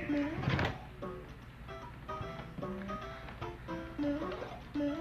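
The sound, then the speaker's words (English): A drawer is pulled open with a dull thunk, followed by scattered knocks and shuffling as items are rummaged through, while voices murmur throughout. “I can check it out. It's in this drawer right here.”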